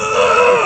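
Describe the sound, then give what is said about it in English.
A person vocally imitates a squeaky toy with one sustained, high, strained squeal that holds steady and then bends downward at the end, fairly loud and with no other talking. “Squeak.”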